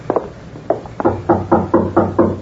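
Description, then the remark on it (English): Knocking on a door, fairly loud: a few scattered raps at first, then a steady run of firm, evenly spaced knocks with no voices. “Now, you knock”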